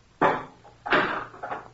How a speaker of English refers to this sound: Wait. Take this slice bar and open the furnace door.